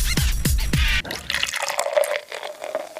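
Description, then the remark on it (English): A celebratory California IPA beer pours into a glass, starting with three quick, heavy glugs and then settling into a steady, fizzy stream of liquid filling the glass, with no one talking. “Celebratory glass of beer there.”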